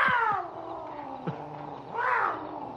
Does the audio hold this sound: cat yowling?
yes